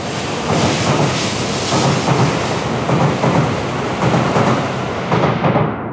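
Train station ambience in Kyoto, Japan: a loud, continuous rumbling roar with faint rhythmic clattering, like rail cars rolling by, holding steady throughout with no voices.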